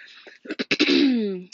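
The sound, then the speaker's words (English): A person clears their throat: a few quick rough bursts, then a longer, drawn-out rasping sound that trails off, followed by a tiny click. “As soon as I say my intro, I clear my throat.”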